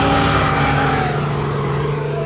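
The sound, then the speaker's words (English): Heavy pickup truck engines, a Ram 2500 raised about 10 feet off the ground and a Chevy, roar and rev steadily while pulling each other back to back in a tug of war at a truck meet in Florida, a loud, continuous low rumble with droning tones throughout and no speech. “As you can hear in the background, there's a Ram 2500, and it's about 10 feet off the ground.”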